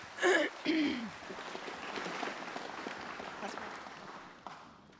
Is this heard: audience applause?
yes